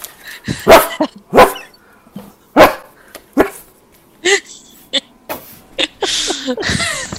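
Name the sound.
person imitating dog barking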